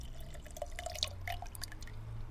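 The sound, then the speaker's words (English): Water trickles into a baby's special drinking cup, with a run of quick, bright drips and plinks over a low steady hum. Fairly quiet and brief, with no voices. “She filled it with water and rushed back to Baby.”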